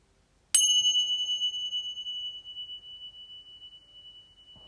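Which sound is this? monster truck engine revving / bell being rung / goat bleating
bell being rung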